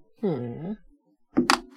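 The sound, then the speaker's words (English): A brief hummed vocal sound, then a few quick hard clatters as dice are rolled in a game and land on a tabletop, fairly loud. “I don't have to roll any more dice.”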